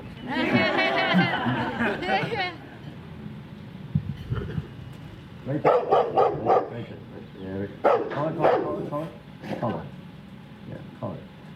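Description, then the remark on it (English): A large Rottweiler barks in repeated loud bursts, clustered in quick runs with short pauses between, with some background voices and noise underneath. “Let's say this drill just kept happening where you just kept walking up to the car, elicited that barking response, and didn't leave.”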